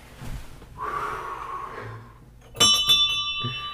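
A ship's bell is struck a few quick times and rings out clearly, its bright metallic tone lingering after a soft breathy rustle.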